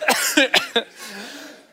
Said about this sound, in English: excuse me, we got a pastor coughing, we got the sound going off.